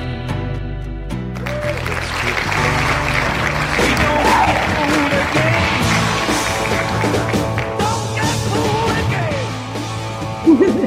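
Drums are banged loosely and unevenly over a dense, noisy wash of crowd sound and sustained tones, with muffled voices mixed in and a sharper hit near the end.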